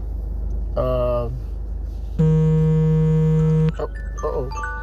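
An alarm goes off: a short buzzy tone, then a loud, steady, low-pitched buzz lasting about a second and a half, followed by a few faint electronic beeps over a constant low hum.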